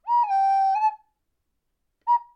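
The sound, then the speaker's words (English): Donkey whistles to call the dragon: a loud, clear whistle holds a steady note for almost a second, dipping slightly in pitch, then after a brief silence a short second chirp follows. No talking. “And Donkey, he said he'd whistle if he needs her. Donkey lets out a...”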